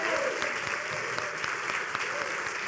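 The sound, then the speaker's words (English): A church audience claps their hands together for God in a steady, dense wash of applause, many overlapping claps sustained at a moderate level throughout with no voices standing out. “Give God a hand clap today.”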